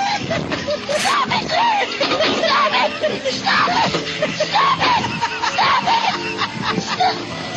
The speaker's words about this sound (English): Give us a little sound too. There goes Fatty. He's falling. He's screaming for help.